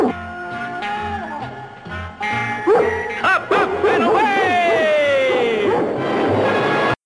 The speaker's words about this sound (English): But he deflects the credit to Crypto, who barks in either approval or annoyance. I really couldn't tell.